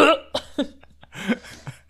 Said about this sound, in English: So angry. It was a very indignant burp.